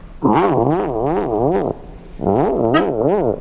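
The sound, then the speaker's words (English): A voice imitates a car starting, in a Michael Winslow-style impression: two loud, buzzy bursts with a fast, rhythmic up-and-down warble like an engine cranking over, separated by a short pause. “Car starting.”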